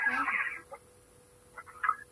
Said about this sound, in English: And you are hearing chickens and goats off to your right.